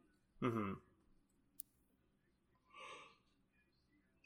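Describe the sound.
A person yawns, starting with a short voiced, drawn-out groan and ending a couple of seconds later in a soft, breathy exhale, with quiet background noise throughout.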